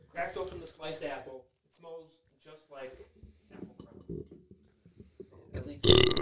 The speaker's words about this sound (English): And it's like purposely burped into the mic for some reason. That's so awesome.